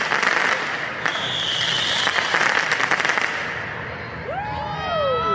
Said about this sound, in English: Of course, the fireworks continued, and once they hit a certain frequency, everyone's brains kind of got numb to the effect. If I can be honest, it started to be fun.